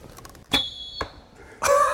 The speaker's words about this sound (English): He says there's something about releasing an arrow into the wind that's become, for him anyway, both calming and cathartic. Whistling arrowhead.